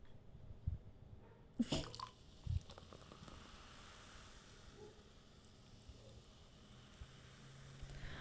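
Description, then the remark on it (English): A fizzy drink is poured into glasses fresh out of the dishwasher, starting with a few splashy bursts, then settling into a steady, soft carbonated hiss and crackle with no talking. “Bubbles to you. Are we doing effervescence?”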